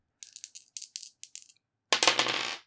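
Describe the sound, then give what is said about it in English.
Two dice being rolled to act under pressure, landing on a 5 and a 6: a quick series of sharp, bright clicks as they rattle together, a short pause, then a louder burst of clattering as they tumble and settle. No one speaks. “I'd like you to roll to act under pressure.”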